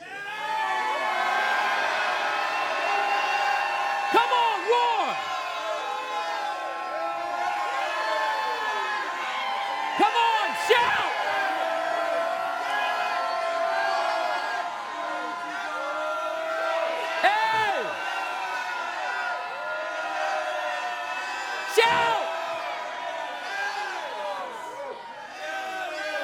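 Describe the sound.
A large crowd at a religious gathering roars like lions and shouts together as urged, in a sustained, dense wall of voices, with whoops and yells rising above it and a few sharp bursts punctuating the din.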